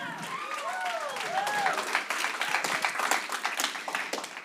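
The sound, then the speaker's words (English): A crowd breaks into steady applause for the youth ministry Living Water Youth (LWY), many hands clapping in a dense patter, with a few whoops and excited cheering voices rising over it at the start. “Yeah, you can clap.”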